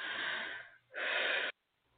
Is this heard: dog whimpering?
no